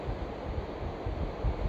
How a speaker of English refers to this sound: I appreciate it's probably kind of loud, because the tide is coming in. I suspect that by the time I've finished the podcast, the tide will very much be coming in. You know, possibly tickling my toes.